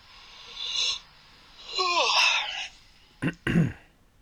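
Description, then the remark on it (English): A breathy yawn with a voiced tone that slides downward, followed by two short, sharp exhales or throat noises near the end. No speech. “No yawning on the podcast.”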